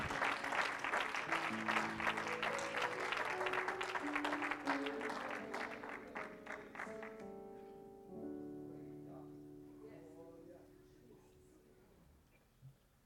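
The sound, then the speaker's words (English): A church audience claps hands loudly and steadily in praise to Jesus over sustained keyboard chords for several seconds. The clapping then thins out and stops, leaving the held chords to fade away softly. “One more time, clap your hands and give Jesus a praise in this house.”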